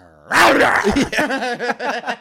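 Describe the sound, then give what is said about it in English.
A person imitates the growl of a female pet cat when someone lies on her on the couch: a short low hum breaking into a loud, raspy snarl that wavers in rough pulses, with no other talk. “lay my head on Kixie and I'm just like, okay, don't growl”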